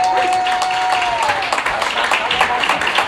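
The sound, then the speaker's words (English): An audience at a church service claps their hands for Jesus in dense, sustained applause, a loud crackling wash of many palms that holds steady throughout, with a faint tonal whistle or feedback line briefly audible early on. “Oh, let's give Jesus a great big hand clap.”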